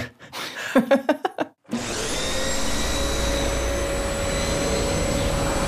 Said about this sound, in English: It seems like our sound designer seems to think we're riding our vacuum cleaners there.